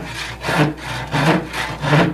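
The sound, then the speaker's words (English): A hand saw cuts through wood in steady back-and-forth strokes, about four loud rasping passes with no voices, as the magician Dr. Melvin practises sawing a girl in half for the WLCS Halloween hop. “Melvin, I see that you're sawing a girl in half.”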